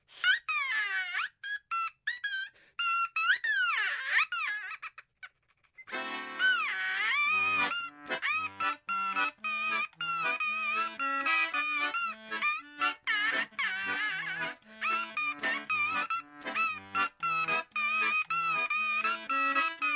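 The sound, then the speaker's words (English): A crow call is blown as an instrument at the WFUV studios, one of several bird calls strapped around the player's neck like a harmonica: harsh, nasal honking tones that slide and waver alone at first, then play a bouncy, rhythmic tune over a steady low pulse. “He showed up at the WFUV studios with a number of bird calls, which he straps around his neck in the same way other musicians would a harmonica.”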